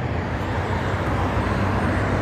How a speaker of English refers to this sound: Yeah, the bus comes through right over here.